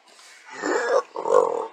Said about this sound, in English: Excuse me, guys. I did not mean to belch like that.